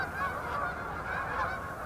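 geese honking

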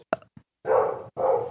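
dog barking

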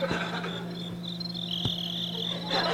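cricket chirping

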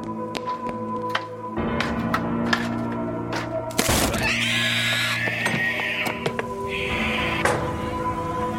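door thudding

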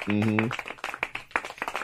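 hands clapping

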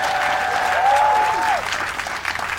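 audience applause

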